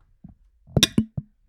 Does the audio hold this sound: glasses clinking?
yes